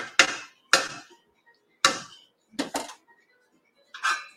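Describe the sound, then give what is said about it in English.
A spoon knocks against the side of a pot while stirring simmering soup: six sharp, bright clinks at uneven intervals, each with a brief ringing tail, and no one talking. “I'm going to mix it up a little bit and let's see what happens.”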